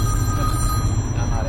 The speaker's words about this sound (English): That's Big Head Joe calling, but I'm not answering. So. Phone is ringing.